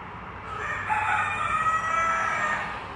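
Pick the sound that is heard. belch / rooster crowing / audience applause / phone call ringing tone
rooster crowing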